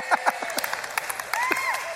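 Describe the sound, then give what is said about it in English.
A small group claps unevenly for a couple of seconds during a sermon, the scattered hand claps mixed with brief whoops and vocal exclamations from the crowd, moderately loud. “The staff is paid, so they have to clap.”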